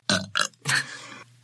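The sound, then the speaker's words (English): A short series of loud burps after drinking beer, two quick ones followed by a longer drawn-out belch, with a brief start of another at the very end. “Beer. I haven't had a lot of beer lately. Making me burpy.”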